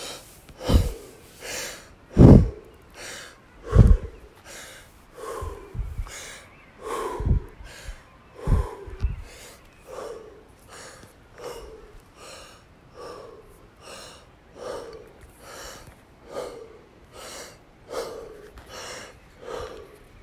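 Forceful, rhythmic deep breathing: quick inhales and exhales repeat about once a second for twenty seconds, each breath a loud airy rush, with no talking.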